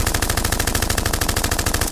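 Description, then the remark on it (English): A loud, sustained burst of rapid automatic gunfire, dozens of sharp shots in a steady, fast rhythm that stops abruptly after about two seconds, with no voices. “No one shoots at good police in this town and gets away with it.”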